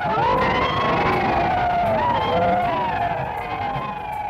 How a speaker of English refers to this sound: And when the speech was done, it would often conclude with a war whoop, the famous rebel yell.